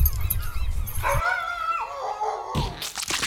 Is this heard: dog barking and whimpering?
yes